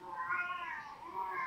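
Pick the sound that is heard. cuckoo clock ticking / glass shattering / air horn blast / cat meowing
cat meowing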